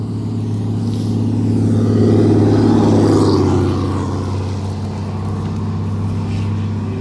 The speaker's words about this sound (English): Our truck that likes to scream up our road every morning. Off to the side, yep.